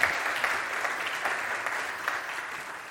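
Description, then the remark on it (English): A crowd claps steadily in a dense, continuous wash of applause, many hands at once with scattered sharper claps poking through, holding an even moderate level for a few seconds. “And we can round of applause again.”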